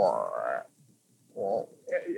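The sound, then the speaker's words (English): Three raspy, croaking breaths from a frog-like creature, each about half a second long and separated by short quiet gaps. They are fairly soft, with no other sounds around them. “Yeah, I suppose you hear the faint breathing of a frog-like creature.”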